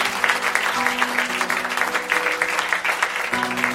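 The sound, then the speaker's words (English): A room full of people at a Christian church service clapping steadily for the words of the message, a dense, continuous patter of applause lasting the whole moment, with a faint sustained musical tone humming underneath. “A round of applause for the words.”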